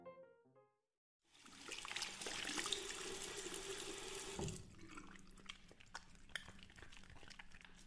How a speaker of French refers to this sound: Je me lave les mains une douzaine de fois par jour, probablement plus. Je me frotte de façon obsessionnelle. Je frotte en espérant que cela fasse une différence.